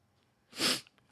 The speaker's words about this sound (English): Jesus Christ! What was that? What just happened? Fucking sneeze, dude.